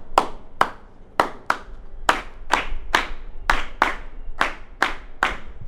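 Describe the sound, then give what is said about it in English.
Sharp, crisp hand claps repeat in a steady syncopated rhythm, the New Orleans beat also called the Bo Diddley beat or 3-2 son clave, about a dozen in all with some falling in quick pairs, clear and fairly loud with no voices. “I want y'all to give me a hand clap.”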